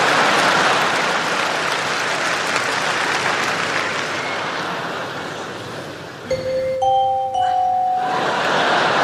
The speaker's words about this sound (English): And that is highly effective as a doorbell, see?